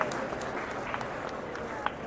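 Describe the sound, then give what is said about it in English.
Steady audience applause at a comic panel as a panelist walks up the middle, a dense wash of many hands clapping at an even level, with crowd murmuring mixed in and a few sharper claps standing out. “Oh, okay, give him a clap again, because he's walking up the middle.”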